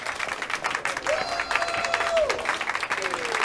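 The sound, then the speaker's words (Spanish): Steady applause from a group of people clapping at a man as he comes back from the bathroom, a dense wash of many hands clapping continuously at a fairly loud level, with a few faint tonal whistles or cheers threading through. “Y bajo, y efectivamente, aplausos.”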